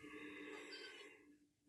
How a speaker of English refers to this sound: And then a big yawn. And that opens up that entire ear canal.